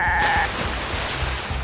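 A goat or ram lets out one short, loud bleat, cut off almost immediately by a heavy rush of splashing, churning water as a cart, the animal and its passengers crash into icy water.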